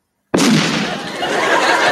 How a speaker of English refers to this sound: That's one of the reasons I always thought the Muppets were weird. Why is that? They think explosions are funny. Yes. Explosions aren't funny.